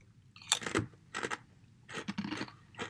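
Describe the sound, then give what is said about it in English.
Crisp crunching of gluten-free vegetable chips made from potatoes, tomatoes, carrots and beets, sold in a tube, being chewed in three bursts separated by short pauses, the bites sounding brittle and dry with no voices present. “I mean, Pringle consistency. Really quite salty. Not super crunchy.”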